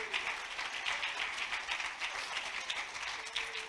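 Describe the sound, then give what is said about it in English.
An audience, standing, claps their hands in a dense, steady burst of applause lasting several seconds, with the sharp, crackling texture of many hands at once and no speech over it. “Let's stand to our feet and clap our hands and thank God for the storehouse.”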